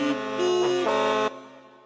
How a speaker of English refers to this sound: He made a decision one day that the taxi drivers were not to honk their horns from tomorrow. And it worked.